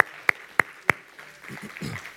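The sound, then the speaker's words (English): Three sharp, evenly spaced hand claps ring out loud as a church audience applauds itself, followed by a faint, low murmur as the clapping stops. “So you should give yourselves a round of applause for that.”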